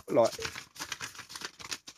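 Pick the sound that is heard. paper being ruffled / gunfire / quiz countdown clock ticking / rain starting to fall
paper being ruffled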